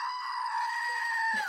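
A goat lets out one long, loud, human-like scream, holding a steady high pitch for over a second before it drops off abruptly at the end.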